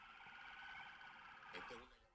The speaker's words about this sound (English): As you can plainly hear, there were police cars.